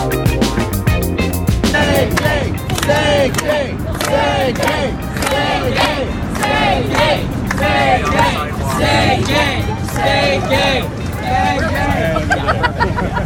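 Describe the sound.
A large crowd of striking Disney employees in Orlando chants in loud, rhythmic unison at a rally, voices rising and falling in repeated shouted phrases, with a steady roar of many people throughout.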